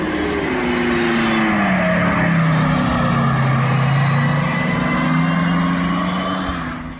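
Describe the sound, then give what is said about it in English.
A loud, sustained motor whine with layered tonal harmonics that sweep downward and then level off, suggesting a gear change toward the end, from an electric car whose makers say the sound is amplified electric motor noise, though it seems to model some combustion sound. “Now, it does sound to me like they are really trying to model a bit of combustion sound in there.”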